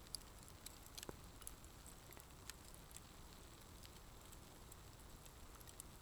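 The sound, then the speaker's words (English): A quiet campfire crackles steadily, with irregular sharp pops and snaps scattered over a soft, hissing bed of burning. No voices, just the fire at low volume. “And so with every breath, we're taking in the crackles and the pops.”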